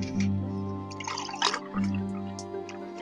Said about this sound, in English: Do you want milk? I have a bottle of milk. Let me pour you some milk.